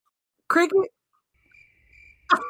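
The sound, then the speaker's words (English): A faint, steady cricket chirp trills for under a second in a quiet gap, framed by short bursts of a person's voice before and after. “I was just about to say, I'm going to put some cricket sounds.”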